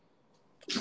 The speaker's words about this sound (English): Not you, the dog sneezed.